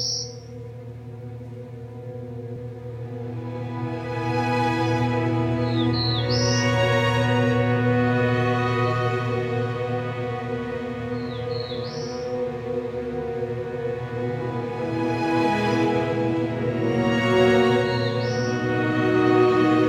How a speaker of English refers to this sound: Black-throated blue warblers are a small songbird that are found in the understory of mature woodlands.